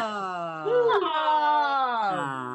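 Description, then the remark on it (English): A female dog named Molly, just woken up, lets out a drawn-out, grumbling growl, a continuous throaty sound with a whiny, rising and falling tone lasting a couple of seconds. “You're going to hear a little growl because she doesn't like when I wake her up.”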